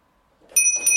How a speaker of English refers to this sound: Should I ring the doorbell?